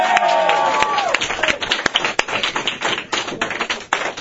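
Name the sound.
audience applause and cheering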